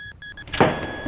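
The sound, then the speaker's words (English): Three quick electronic beeps, then a burst of noise as a sizing machine kicks on and settles into a steady whirring hum with a high tone running through it. “Start up the sizing machine!”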